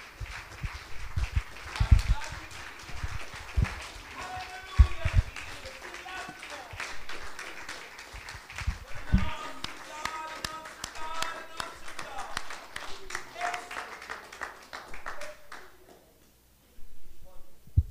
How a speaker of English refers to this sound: Will you receive him and the Lord tonight by giving God a hand clap of praise as he comes to minister the word of the Lord this evening?